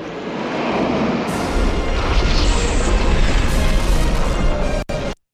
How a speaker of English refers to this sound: So my first one here is, late 80s lightning effect sound effects. This always sounds bad. So here you go.